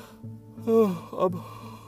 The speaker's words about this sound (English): I'm yawning.